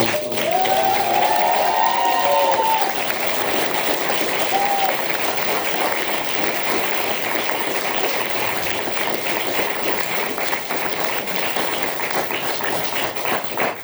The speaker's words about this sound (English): As a matter of fact, we can get a round of applause for those two.